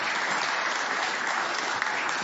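A crowd claps steadily in a dense, continuous wash of applause that stays at an even, fairly loud level throughout, with no voices standing out.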